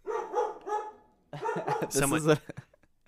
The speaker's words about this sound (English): Everybody, this is Jimmy's dog, May. She has thoughts. She's like, take the money.